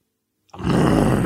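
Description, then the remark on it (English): A voice imitates a lion, letting out a loud, raspy roaring grunt that starts abruptly after a moment of silence and holds steady to the end. “I'm mad I had to hear it in my ears like I turn into a fucking lion, dog.”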